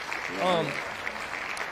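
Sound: round of applause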